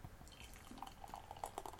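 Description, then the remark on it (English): A dark beer brewed in Fairfield, California, is poured into a glass, heard faintly as a short run of soft gurgles and small bubbly plinks over a quiet hiss, with no talking. “Oh, that's a dark beer. Yeah, baby. All right, and the pour.”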